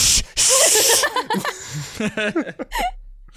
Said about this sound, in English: Shh. Like, shh, we don't need to talk about this.